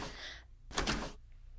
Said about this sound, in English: the sliding door to the pool won't budge. Can you open it?